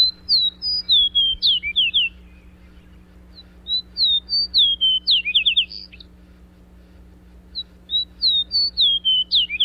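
A fox sparrow sings three rich, clear phrases of sweet whistled notes with short pauses between, loud over a faint steady low hum, with no voices.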